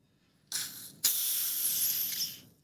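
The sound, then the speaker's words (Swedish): A champagne bottle with a fairly narrow cork is eased open: a soft hiss begins, pauses briefly, then a sharper release gives way to a steady gas hiss that fades after about two seconds. No one speaks. “Nej, du är väldigt smakfull när du öppnar champagne.”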